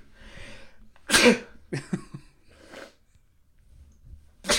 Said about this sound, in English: I'm about to sneeze.